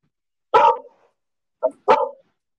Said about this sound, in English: Ladies and gentlemen, my dog. Look at him go.